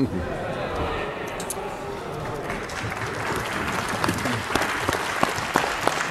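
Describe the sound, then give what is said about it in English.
Sustained standing-ovation applause from both sides of the House of Representatives for Michael McCormack after his last question time as Deputy Prime Minister, steady and dense throughout, with sharper individual claps standing out near the end and a faint murmur of voices underneath. “And that applause continued from both sides of the House and a standing ovation for the Honourable Michael Mcormack as well.”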